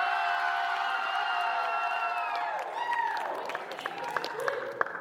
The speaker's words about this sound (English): can you guys cheer again if you've enjoyed Marty's snacks over the past few months?